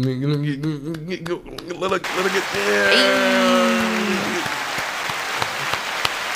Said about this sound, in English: So, like, when I go home and I get naked at home in my bedroom, there's just an automatic round of applause. I would love it.